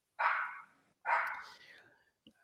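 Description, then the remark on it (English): A dog barks twice, two loud, drawn-out barks with a short pause between them, followed by a faint brief sound at the end. “dog agrees with me there, I think.”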